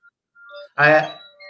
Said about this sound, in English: I can hear the bell, so we must be getting sound.